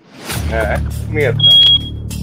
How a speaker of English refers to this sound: Alright. I think a fire alarm's going off. The fire alarm is going off!